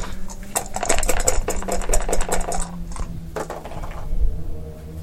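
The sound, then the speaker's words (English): Three dice are rolled for a stealth roll in a game. They rattle and clatter in a rapid, dense burst of hard clicks for a couple of seconds, then give a few last taps as they settle, fairly loud. “So I roll... 3 dice? 3 dice. You want to roll low.”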